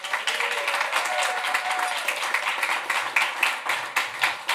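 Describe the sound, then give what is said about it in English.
Sustained audience applause, a dense steady wash of many hands clapping at fairly loud level, with faint cheers and a few whoops rising through the crowd noise, as the audience welcomes speaker Charlie Gilkey being introduced at a morning event. “Let us cheer as if we've never cheered before for Charlie Gilkey.”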